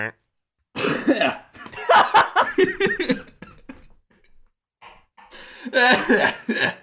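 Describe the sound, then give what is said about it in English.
A loud burst of coughing, several harsh coughs in a row with throaty, laugh-like sounds mixed in, a brief pause, then another rough coughing spell near the end. “Sorry, that cough was on beat.”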